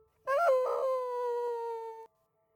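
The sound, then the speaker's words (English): A single drawn-out howl from Bo the dog at night rises briefly at the start, then holds a steady, mournful tone for nearly two seconds before cutting off. It is fairly loud, with no other sounds. “Bo howled into the night.”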